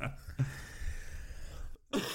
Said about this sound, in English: Sorry about that. That's all right. I know the cough. I probably gave it to you.